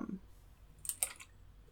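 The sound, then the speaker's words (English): A few soft, quick computer keyboard key clicks in a short cluster, fairly quiet, with no talking over them. “I want to start typing, but my keyboard is so”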